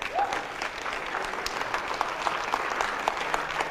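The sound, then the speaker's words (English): A crowd claps their hands in worship, a steady, dense wash of applause, many overlapping claps forming a continuous sound throughout. “Clap your hands.”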